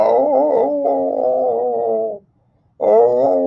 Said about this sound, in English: And what I do know, when you leave him alone, he doesn't bark. He fucking howls.